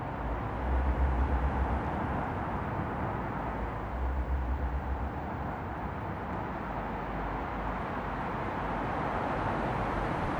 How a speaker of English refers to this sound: And running between the two, like a hot knife, the feeder road. A relentless tsunami of heavy metal, articulated lorries, container drivers, screaming sirens, coffee-fueled commuters, and the occasional petrified cyclist.